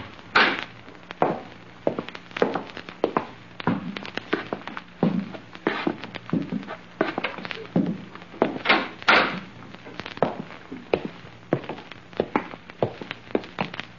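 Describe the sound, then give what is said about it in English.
A back door opens and closes amid a busy run of sharp clunks and thumps, scattered irregularly over several seconds with no voices. “We're going out through the back door.”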